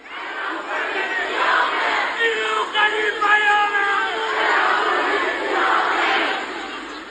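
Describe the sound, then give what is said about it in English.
A large protest crowd outside a prison in Karaj, Iran, just west of Tehran, late at night on 8 January, shouts and chants angrily in unison, "I will kill whoever kills my brother", a loud, dense roar of many voices that swells and stays steady throughout. “Now, there's video footage of the crowd outside the prison. The crowd is angry, and they're chanting, I will kill whoever kills my brother.”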